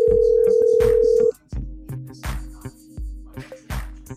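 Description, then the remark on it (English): A steady, loud telephone dial tone hums for about a second, then cuts off into a run of rhythmic tonal bursts as the number is dialed, each pulse fairly loud. “We're making a nice phone call.”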